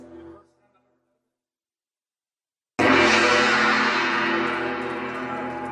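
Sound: gong being struck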